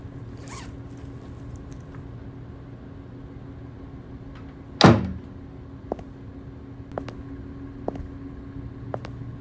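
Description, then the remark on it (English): A door is pushed shut with one sharp, loud clunk, followed by a few faint, scattered clicks as it is locked, against a steady low background hum with no one speaking. “I made sure I locked the door, but I know the window is getting fixed today, so if it was open, when I get back I'm sure I won't panic.”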